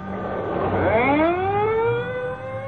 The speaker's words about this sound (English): The ambulance is pulling away. And there go the police cars.